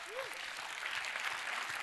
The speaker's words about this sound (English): Yeah, let's cheer for that. Come on.